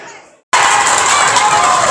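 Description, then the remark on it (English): A football stadium crowd bursts into cheering as Ruben Reid cuts into the box and is brought down for a penalty at 0-0: after a half-second of faint murmur, a sudden loud, dense roar erupts and holds steady to the end. “You might be able to hear the cheer.”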